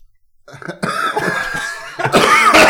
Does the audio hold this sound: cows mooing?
no